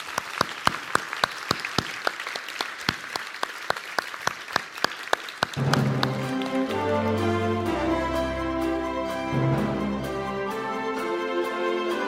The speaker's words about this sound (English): A big round of applause for this panel.